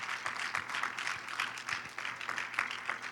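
A church audience claps for guests, a dense, steady wash of many hands with scattered sharper claps standing out, sustained at an even level for a few seconds with no voices.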